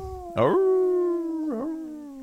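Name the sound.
person imitating a howl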